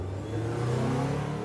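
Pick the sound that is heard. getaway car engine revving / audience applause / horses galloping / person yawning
getaway car engine revving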